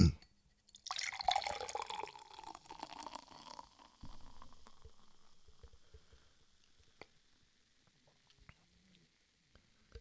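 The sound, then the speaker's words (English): A hazy 6.5% IPA pours steadily into a borrowed brewery glass for about three seconds, a gurgling rush that then settles into a soft, fading fizz with a few faint drips and clinks. “I'm going to pour this sucker in.”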